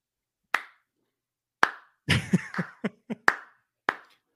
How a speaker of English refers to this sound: I'm going to stand for a second. Hold on. Cheers. Okay. That's right. Standing ovation for Mr. Marino.